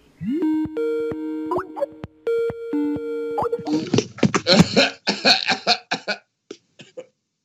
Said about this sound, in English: I'm keeping that cough in